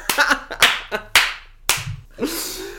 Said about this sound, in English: All the round of applause for that one.